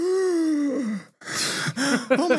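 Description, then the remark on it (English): A person lets out a dramatic, theatrical HBO-style gasp: a sharp breathy intake after a drawn-out falling vocal tone, followed by more exaggerated voiced sounds. “So did you sorry, let me get in character with my HBO gasp.”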